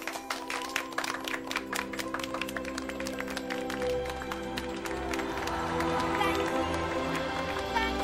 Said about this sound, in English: Do you believe in fairies? Say quick that you believe. If you believe, clap your hands. Clap louder!